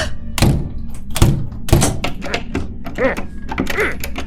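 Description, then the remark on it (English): A locked door thuds heavily three times in quick succession as it is tried and jolted in its frame, followed by faint vocal sounds in the background. “I can't open them. What? That's impossible. None of these doors lock.”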